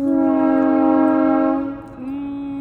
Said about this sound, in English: All right. The train. Yeah, sorry. The train goes by. Okay. You definitely heard. Look at the audio. Yeah. We'll have to cut this out. Wait till it passes.